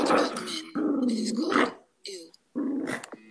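A dog growls in rough, throaty bursts, fairly loud, with brief pauses between them and a higher whining whimper creeping in near the end.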